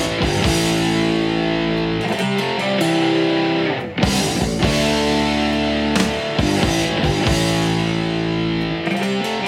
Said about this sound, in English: In addition to this meaty guitar sound in the intro, there's this rinky-dink cymbal sound, a bit like bells, that's quite interesting.